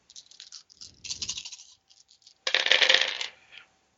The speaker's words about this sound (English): I'm gonna roll dice and hope for the best.